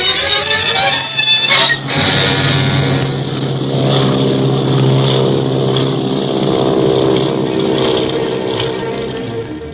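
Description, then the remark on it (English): A steady, loud propeller airplane engine drones continuously, a low throbbing hum with a brief dip near the start, then holding level throughout; the plane is the Clipper bound for Hong Kong. “Clint and Barney send a cablegram in code to Chief Riley of the International Secret Police stating that a jewel smuggler was also aboard the Clipper bound for Hong Kong.”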